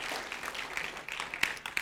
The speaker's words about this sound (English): Come on, give the Lord a hand clap.